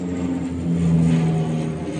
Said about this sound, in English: Planes and helicopters dumped water as local farmers bulldozed crops, making a protective fire cut around the town of Santa Coloma de Queralt.